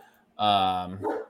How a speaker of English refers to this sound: Just go ahead and ignore the dogs barking in the background.